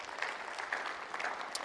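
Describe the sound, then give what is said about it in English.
A crowd claps as a clap offering of praise to the Lord, in dense, continuous applause, many hands overlapping into a steady bright patter with a few sharper claps standing out, no voices over it. “Come on, give a little clap offering of praise to the Lord.”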